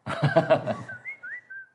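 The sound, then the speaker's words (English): A short burst of voice gives way to a few quick whistled notes, someone whistling an imitation of a phone's iMessage notification tone, fairly clear. “I just got a message. iMessage.”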